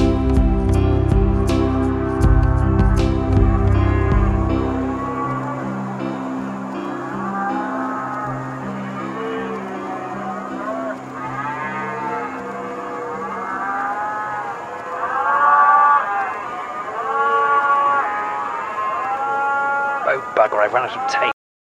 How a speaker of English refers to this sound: The pygmy cows are here. They don't fuck about. You better watch out for their ears. Here they come. Those little pygmy cows. Here they come.